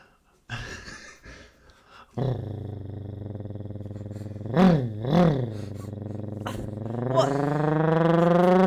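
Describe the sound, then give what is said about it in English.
A person imitates an idling car engine with a low, steady vocal rumble that runs for several seconds, swells briefly into two revving surges, then rises into a louder, higher revving drone at the end. “I can also do a car idling.”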